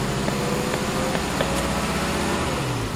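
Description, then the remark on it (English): A car engine hums steadily from inside the vehicle, its pitch climbing slightly toward the end as the driver presses the gas and the RPMs rise, with no one talking. “This is your live data display if I hit the gas a bit more. Yeah. You'll see the RPMs heading up.”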